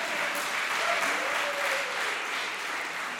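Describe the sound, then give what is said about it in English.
An audience applauds steadily for about three seconds, a dense, even wash of many hands clapping at a moderate level with no voices standing out. “Yeah, y'all can clap for that.”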